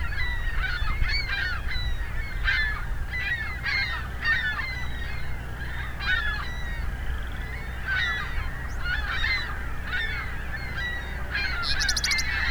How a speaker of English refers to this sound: A lot of ringbill calls. Ringbill gull calls. They seem to have collectively decided to change direction. And changing direction again. Seem to be all ring-billed gulls.